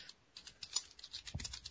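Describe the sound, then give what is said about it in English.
Quick, irregular clicking of keys on a computer keyboard, fairly quiet, with a slightly heavier tap cluster near the end. No one speaks. “Oh, he's typing.”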